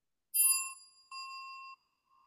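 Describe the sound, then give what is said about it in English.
A bright, ringing notification ding sounds alone, followed by a second steadier chime tone that holds briefly and cuts off, with a faint third tone starting at the end. “If you haven't already, please make sure to like, subscribe, and click the notification bell.”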